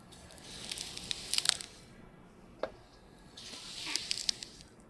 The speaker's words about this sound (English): Just glide. That's right. It's so smooth. I'm going to just, when I go to sleep at night, I'm just going to play that. Yeah. Kind of like a white noise machine, right. But just scallions slicing.